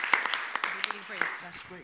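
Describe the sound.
Scattered hand claps from a small group, irregular and fairly soft, with voices murmuring underneath throughout.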